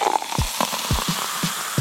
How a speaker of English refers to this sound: No, you need the bubbles. Right. But the reason why you're so fond of the fizz may surprise you. It turns out bubbles of carbon dioxide trigger your pain sensors. Ow! Yep, the bubbly fizz in soda pop activates the same pain sensors as spicy